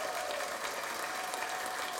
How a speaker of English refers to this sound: And I've got lots of different sound effects that I can play. So like an air horn. I don't know whether this is going to come through. Or we've got some clapping.